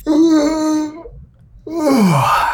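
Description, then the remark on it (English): A loud human yawn: a sustained voiced stretch, a brief pause, then a long sighing exhale that slides down in pitch, with no speech. “I'm sorry, I like, yawned.”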